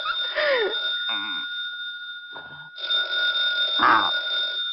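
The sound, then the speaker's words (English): A telephone bell rings in two long bursts separated by a short pause, loud, with a thin, tinny old-recording quality. “Rick, the phone's ringing.”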